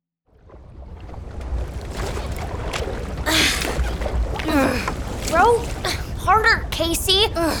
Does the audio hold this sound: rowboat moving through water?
yes